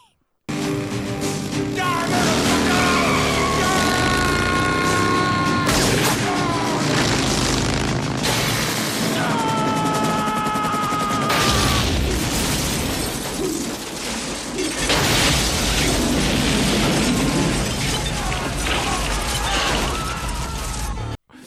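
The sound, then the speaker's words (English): A huge cinematic movie explosion as a motorcycle hits a helicopter: repeated booming blasts and shattering, clattering debris, loud, layered over a dramatic orchestral score that keeps roaring for about twenty seconds. “But this a rubber wheel touches it, and it just, the biggest explosion you've ever seen.”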